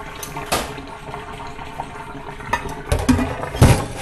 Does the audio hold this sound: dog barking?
no